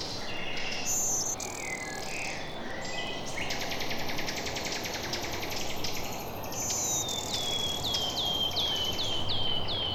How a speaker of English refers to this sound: Black-throated green warbler.